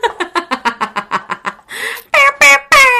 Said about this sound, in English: So, as you know, Dawn recently downloaded a wonderful app that makes air horn noises. Is that all it does? That's all it does.